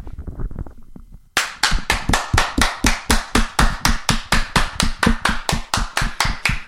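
A small round of applause: after a brief, quiet lead-in, sharp claps start abruptly and continue in a fast, steady rhythm, loud and crisp, with no talking over them.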